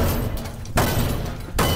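A tiny pizza cannon is fired indoors, struck downward to fire. Two sharp, loud blasts come less than a second apart, each bursting across the whole range and leaving a dense, noisy rumble between them.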